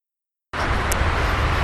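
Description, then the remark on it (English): After a moment of silence, a steady, fairly loud wash of road traffic, heard from a trail while running, cuts in abruptly and continues, a broad rumbling roar with no voices. “There might be some wind breeze, some traffic, other folks on the trail.”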